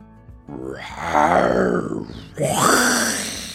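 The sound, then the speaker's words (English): A voice imitates a fire-breathing dragon growling: two loud, drawn-out guttural growls, the first longer and rising in intensity, the second starting after a brief pause. “A fire-breathing dragon was walking into the throne room.”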